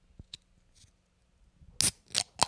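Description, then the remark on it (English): A can being opened: a few faint metallic clicks, then a sharp crack and short bright bursts of hissing fizz, crisp and loud, with no voices. “Anyone that complains about like can openings, this was a good can open.”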